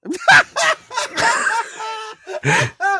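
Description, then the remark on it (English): A bird squawks and calls in a rapid series of short bursts, harsh raspy screeches alternating with clearer whistled tones, fairly loud and heard on its own without talking. “It might be my neighbors, but it's like super, super faint on my side. Oh, do your neighbors have a bird?”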